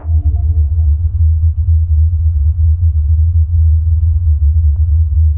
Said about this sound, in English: In 1991, the residents of Taos, New Mexico, were shaken out of their sleep by a strange humming sound. It was described as a low-frequency rumble, like the sound of a distant engine running. Well, more like thousands of engines.